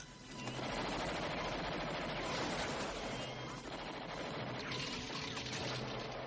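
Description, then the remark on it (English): In a movie scene, a loud, unbroken burst of rapid automatic gunfire, shot at a helicopter, fills the whole stretch, dense crackling shots blurring into a harsh roar with no pause and no clear voices. “This amazing shot this kid is.”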